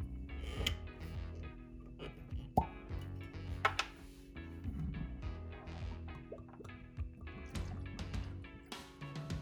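A bottle of Balvenie Speyside whisky is uncorked with a soft pop and creak, then the whisky glugs and trickles into a glass over a low steady background hum.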